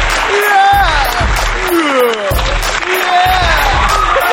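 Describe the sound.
Loud, steady audience applause at the opening of a show fills the whole stretch, with cheering voices and whoops sliding up and down in pitch over the clapping.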